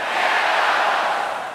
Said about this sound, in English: Could everyone yell bananas on the count of three? One, two, three.